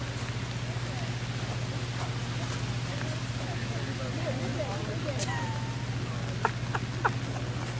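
Heavy rain falls steadily in a dense, even hiss, with scattered sharper drops tapping and a low constant hum underneath.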